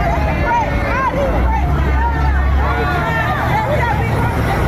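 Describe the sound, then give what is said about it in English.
A crowd yells and chants "Free Trump", many raised voices overlapping into a loud, continuous roar with a steady low rumble underneath throughout. “Free Trump, they're yelling.”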